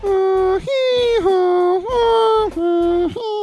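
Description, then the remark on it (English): A voice imitates a European two-tone siren, swinging steadily between a high and a lower note about every half second, loud and sustained, with no other sounds. “But I always think the best way is just the European siren.”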